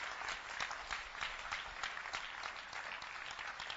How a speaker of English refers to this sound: Even as you're clapping, it's a sign of your honor. In this church.